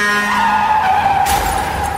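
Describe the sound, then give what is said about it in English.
A loud, sustained tire screech as a car skids, cut off about halfway through by a sudden crashing impact with broad noise: a Greyhound bus striking Ben Hogan's car head-on on a foggy night outside El Paso, Texas, on February 2, 1949. No one speaks. “A Greyhound bus pulled out to pass a truck and struck Hogan's car head-on.”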